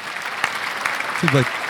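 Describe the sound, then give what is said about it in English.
A canned applause sound effect, triggered by pressing an applause button, plays as a steady, dense wash of crackling claps at moderate loudness, with a short burst of a voice breaking in near the end. “Yeah, it seemed hollow when you pressed the applause button.”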